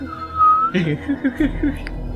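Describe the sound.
A single short, steady whistle note, blown to call a trained horse, sounds clearly, then gives way to a few soft, muffled sounds and faint voice-like murmuring in the background.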